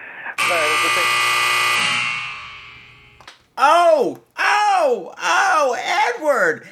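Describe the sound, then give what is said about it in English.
A loud, harsh game show buzzer blares steadily for about three seconds and fades out, followed by a voice letting out drawn-out, swooping exclamations. “Oh, I haven't used the buzzer in a long time either.”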